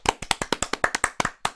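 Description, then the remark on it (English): A short burst of applause from the hosts, roughly a dozen sharp claps in a quick, slightly uneven rhythm, with no talking over it. “You're gonna get some applause from us.”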